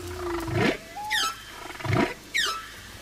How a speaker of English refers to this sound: Humpback whales perform the most incredible whale songs. With an elaborate set pattern of calls that lasts between 10 and 20 minutes